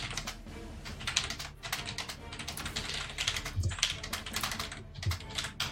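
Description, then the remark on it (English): Rapid, dense typing on a computer keyboard as a message is written to an online chat, keys clattering in a fast continuous stream with occasional heavier thumps, fairly loud, no voices. “Furious typing.”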